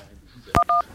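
A sharp click followed by two short electronic keypad tones, each a steady dual-pitched beep, pressed in quick succession while dialing a phone number, fairly loud.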